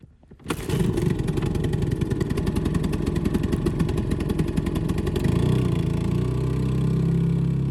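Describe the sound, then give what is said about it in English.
A small outboard motor on a dinghy heading back to a yacht starts up and runs loud, a steady buzzing throb that drops into a deeper, rougher tone near the end. No voices. “I'm on a dinghy heading back to the yacht to install the new motor.”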